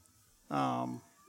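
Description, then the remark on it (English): A single meow from a female cat, clear, lasting about half a second with a strong, tonal, drawn-out quality against a quiet background. “And my cat's not quite so happy because we've interrupted her schedule of coming and going.”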